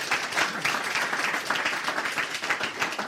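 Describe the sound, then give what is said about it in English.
A crowd applauds a man taking part in an exercise experiment, steadily for about three seconds, a dense wash of many hands clapping at once with no pauses and no voices standing out. “Give him a clap.”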